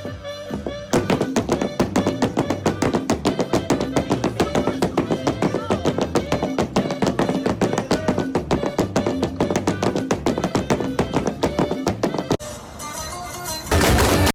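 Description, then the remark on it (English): Rapid, steady stomping of huapango dance steps on a wooden floor, sharp percussive hits repeating in tight rhythm over lively string music that continues throughout, ending with a brief burst of louder, noisier sound. “This audio shows how the stomping goes along with the music that is being heard in the background.”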